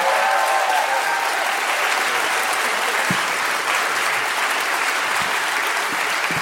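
An audience claps steadily and loudly, a dense wash of many hands sustained for several seconds with an even intensity, with no voices.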